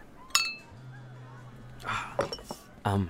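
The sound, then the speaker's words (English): A single bright clink of glasses rings out near the start in a toast to tough mothers, its ringing briefly lingering, followed by soft background sounds and voices speaking afterward. “Hey, to the tough mamas. Cheers. To them.”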